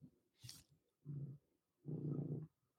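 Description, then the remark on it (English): A fat cat adopted from a shelter purrs, a low rumbling vibration in two swelling bursts with a brief pause between, after a soft breathy rustle. No one speaks. “I hear the purring.”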